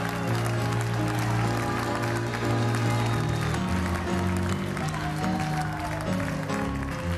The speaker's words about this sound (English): The Bible said, clap your hands, all ye people. Shout unto God with the voice of triumph.